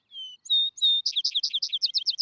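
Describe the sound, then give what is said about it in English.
A vesper sparrow, also called field sparrow, grass finch or bay-winged sparrow, sings clear: a few sweet, drawn-out whistled notes, then a quick, bright trill of repeated chirps rolling to the end. No other sounds accompany it. “The field or vesper sparrow”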